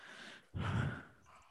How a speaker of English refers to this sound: I'm yawning, bro.